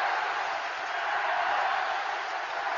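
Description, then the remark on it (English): A huge stadium crowd at Croke Park sings "Rebels" in unison during a match, a dense, steady roar of many voices filling the air, loud and continuous throughout with no individual words standing out. “Rebels is what they're singing, and rebels is what they are.”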